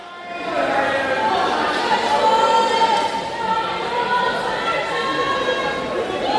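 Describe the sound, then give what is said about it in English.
A crowd at a swimming pool at St. Sidwell's cheers and shouts steadily during the final of the 50 freestyle, a dense wash of many voices with high whoops and calls layered over it, holding loud for several seconds without a break. “And you can see the crowd really activating the noises.”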